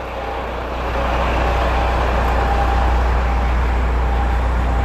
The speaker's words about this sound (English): Let me get past this truck.